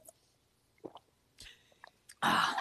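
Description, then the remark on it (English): Quiet sipping and a swallow of water after waking up in the morning, with small wet mouth clicks and gulps, then a sudden loud breathy rush at the very end. No one speaks. “I heard it going down your throat.”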